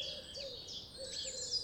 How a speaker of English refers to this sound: Is the bird singing a slow, low song? Is it singing quickly or rapidly? Does it sound cheerful or sad?